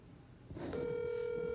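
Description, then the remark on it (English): After a brief muffled rustle, a steady electronic ringing tone starts up and holds as a phone call is placed to a woman who does not answer, fairly loud with no talking. “So let's give her a call.”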